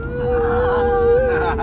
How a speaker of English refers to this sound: Now, as the more astute listener will observe, we're in a car. You can hear that white noise. And the reason is that we're travelling down to Coolangatta.